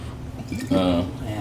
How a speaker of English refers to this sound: I don't like the way that jug pours, man.